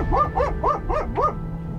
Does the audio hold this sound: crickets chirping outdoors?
no